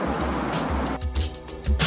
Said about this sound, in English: With the waves in the background.